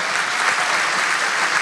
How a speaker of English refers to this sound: And just well done, Australia. Big round of applause.